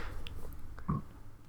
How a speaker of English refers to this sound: Nasty burp. That was a nasty burp. I hope none of you experienced the burp that I just had, because it was gross.